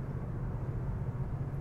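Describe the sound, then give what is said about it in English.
A steady, low rumble of road noise from inside a car being driven near Canyonville, Oregon, constant and droning with no distinct events or voices. “I'm actually mobile in my mobile studio. I'm driving right now.”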